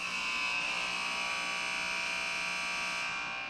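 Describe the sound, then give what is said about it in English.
A loud, steady buzzer horn blares continuously for a few seconds with a harsh, buzzy tone, sounding alone without any talking. “All right, that is the horn, and with it, our final buzzer segment.”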